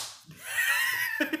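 A quick flurry of hands slapping knees, several people smacking at once on a count of three in a dense burst of claps that swells and fades over about a second.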